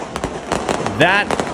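fireworks exploding

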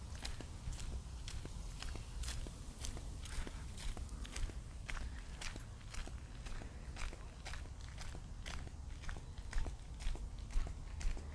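footsteps walking

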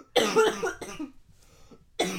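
cough

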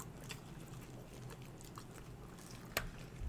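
chewing food

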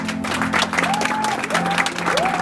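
audience clapping

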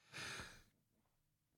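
sneeze

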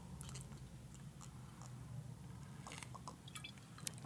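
chugging a drink

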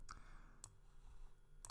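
computer mouse clicking

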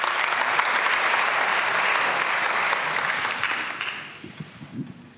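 audience clapping

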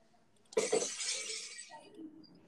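glass breaking sound effect

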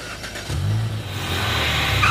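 car engine revving

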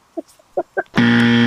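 game show buzzer

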